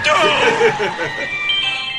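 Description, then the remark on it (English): A tinkly ice cream truck jingle plays steadily at moderate volume, its bright melody running continuously throughout, with voices or laughter mixed faintly underneath. “The ice cream man.”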